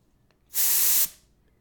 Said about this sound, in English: You know those little fucking spray air dust blasters? Compressed gas that you use for like cleaning off, keyboards or in the little nooks and crannies of life, you know, a little air dust blaster, please don't inhale them.